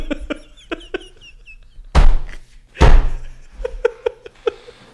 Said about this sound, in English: Why are we closing the door?